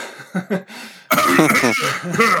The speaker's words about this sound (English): Hey, everybody, get all your coughs out now.